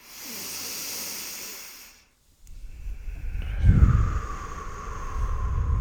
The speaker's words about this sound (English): Last round, fully in. And let it go. Notice your breaths are deeper now. Notice your body moving with your breath.